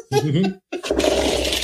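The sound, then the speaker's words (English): A brief voice, a short pause, then a handful of dice clattering and rattling across a hard surface as they are rolled, a busy burst of hard little clicks lasting about a second. “That's a lot of dice.”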